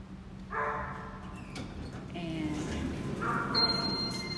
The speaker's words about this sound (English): That dog is so annoying. I would hate to live down here.